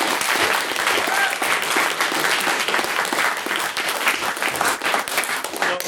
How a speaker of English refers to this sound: Mr. Ali Raja was also making his maiden speech, so he does deserve another applause.